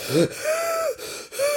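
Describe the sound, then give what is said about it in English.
Three strained, voiced gasps for breath, fairly loud, each a drawn-out wheezy pull of air separated by brief pauses, like someone exhausted and struggling to recover. “The whirlwinds got very tired, and one after the other fell on the ground gasping for breath.”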